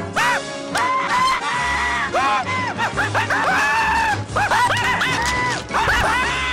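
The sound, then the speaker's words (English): Homer Simpson from The Simpsons screams repeatedly in loud, high, wavering startled bursts, with yelps and gasps between them over a dense, busy background, intense for several seconds. “I think he's a scream king.”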